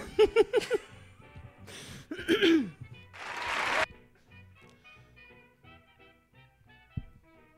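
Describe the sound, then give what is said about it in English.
A very short burst of applause, lasting under a second, follows a few bursts of laughter and vocal sounds, then fades into a faint, quiet background. “Anyway, that was a really short applause.”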